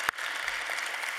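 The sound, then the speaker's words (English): An audience breaks into steady applause for author Patrick Radden Keefe, a dense, even wash of many hands clapping at once with no voices, sustained at a constant level from start to finish. “So just if you give him a round of applause for the time he spent in our community.”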